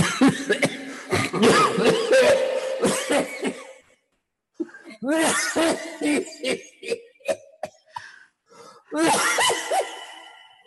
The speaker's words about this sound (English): Wait a minute. I have to cough.